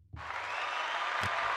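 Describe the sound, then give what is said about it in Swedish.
Applause breaks out after a brief quiet moment and continues steadily as a dense, sustained wash of clapping, loud and even, with no voices over it. “Och så applåder.”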